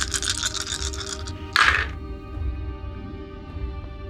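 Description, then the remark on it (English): A light rattling for about a second, then a single sharper clatter as dice are shaken and tossed onto a table, rolled for an attack in a game, followed by a quiet hum. “I'll roll twice on my attack then.”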